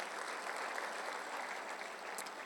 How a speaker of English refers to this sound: Can we give God a clap of praise?